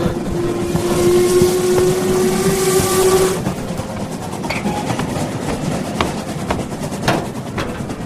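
A rusty old train departs and rumbles and rattles along with steady clanking, opening with a long whistle blast that cuts off after a few seconds, leaving the rhythmic rattling alone.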